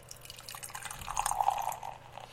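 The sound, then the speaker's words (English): Red ale is poured from a just-opened can into a Café du Monde cup, a steady trickling, splashing stream of liquid that swells in the middle and then tapers off over about two seconds, with no talking. “And the pour.”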